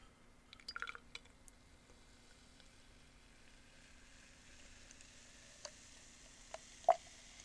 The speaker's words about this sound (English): And let's see if I can get the pour without hammering my mic this time.